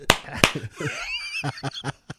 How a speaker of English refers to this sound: And that's not me clapping for enjoyment. That's me imitating. That's dad going to church.